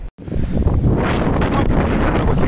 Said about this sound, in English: It is windy. I'm outside. I'm at Malibu, or in Malibu still.